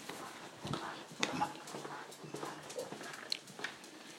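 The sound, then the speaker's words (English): A dog moves about, soft whimpers mixing with scattered claw taps and shuffling on a hard floor; the sounds are quiet and intermittent, with no talking. “Been such a good dog.”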